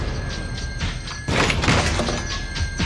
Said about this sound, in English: That was trying to close the door.